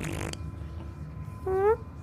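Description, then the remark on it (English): A single short, buzzy mouth fart, a blown raspberry that rises slightly in pitch, loud over a low background murmur, following a brief burst of noise and a quiet pause. “Just mouth farts for a little bit until you're not going to do it.”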